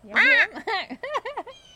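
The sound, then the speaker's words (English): Blue jays caw outdoors: one long, harsh, nasal call followed by four quicker rasping caws in an uneven burst, loud and clear with nothing else around them. “We've got the trees rustling around us and the cutie pie little blue jay saying caw, caw, caw.”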